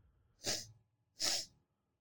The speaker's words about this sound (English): And who's gonna bless you? Bless you again.